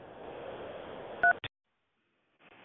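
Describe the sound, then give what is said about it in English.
A steady line hiss is cut by one short, loud keypad tone from a phone as a caller dials a local number in Newport News, then a sharp click and a sudden drop into silence before the hiss returns. “This caller dialed a local number in Newport News.”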